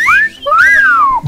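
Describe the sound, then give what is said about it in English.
Whistling by a group on cue, two short sliding phrases, a rising-falling note then a longer arching one, loud with no talking. “When I say the word lady, we're going to whistle.”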